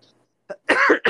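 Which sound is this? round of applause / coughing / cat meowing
coughing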